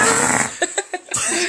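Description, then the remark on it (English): Someone blows wet, sputtering raspberries with their mouth to imitate farts: a long buzzing blast, then a few short pulsing bursts, loud. “Do you guys want to hear my poopy butthole fart noises?”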